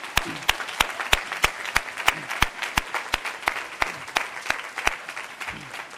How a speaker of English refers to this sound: Enormous congratulations to all the seniors and your families. One more round of applause for ourselves. Congratulations, everybody.